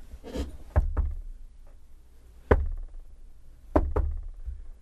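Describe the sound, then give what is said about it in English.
Knocking coming from a wall that a dresser was pushed in front of, in three quick double raps, each pair of sharp thuds separated by a pause, moderately loud against a quiet background. “What's the knocking?”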